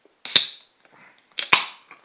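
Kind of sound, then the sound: food or drink, beer can cracking open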